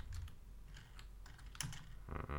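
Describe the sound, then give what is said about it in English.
Typing on a computer keyboard: scattered, irregular key clicks tapping over a low background hum, with a denser cluster of keystrokes at the end. “A lot of typing this episode.”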